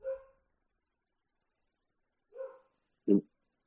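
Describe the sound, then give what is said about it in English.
A dog barks three times with long irregular pauses, the first two short and moderate, the last a sharper, louder bark, with silence in between and no one talking. “Oh, can you hear my dog going off?”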